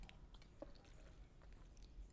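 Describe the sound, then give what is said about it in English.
Someone takes a quiet sip of a drink, with soft wet mouth sounds, a few small clicks and a faint swallow; no one speaks. “I'm getting so heated I needed to take a sip because I'm just so upset by this news.”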